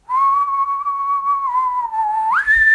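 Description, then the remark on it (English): Someone whistles a film soundtrack melody alone, holding long steady notes that dip slightly lower before rising sharply to a higher pitch at the end, fairly loud. “I can't, like, throw the whistle as good as, like, the person who is doing it does it in the soundtrack.”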